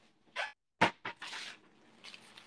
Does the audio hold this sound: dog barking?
yes